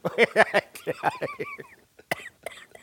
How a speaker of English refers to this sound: Please, somebody help me with this cough. I've been smoking Mullen.